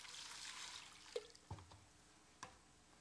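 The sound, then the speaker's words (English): A paintbrush is dipped into water, making three small, soft splashes and drips spaced about a second apart, quiet over a faint background hiss. “And a little bit of water.”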